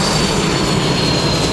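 Loud, steady roar of a T-5 Brave Eagle advanced jet trainer's jet engine in Taiwan, with a thin high-pitched whine running through it, continuous with no pauses or voices.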